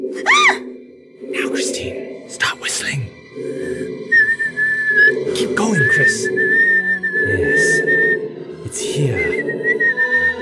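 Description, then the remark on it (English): Someone whistles a steady, wavering melody, holding long notes, while other voices talk over and around it. “No, keep whistling”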